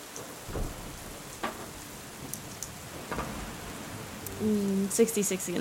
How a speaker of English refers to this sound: Yeah, the storm continues. It kicks up pretty hard.